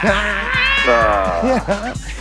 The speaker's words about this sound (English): Yeah, I'll give you some milk, kitty.